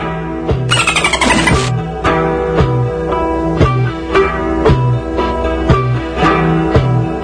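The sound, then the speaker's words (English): A quick burst of high, chattering dolphin-like squeaks lasting about a second, played on Bilgemunky Radio over a steady rhythmic music track with a regular thumping beat that continues afterward. “And then when he plays the dolphin sounds, you must drink.”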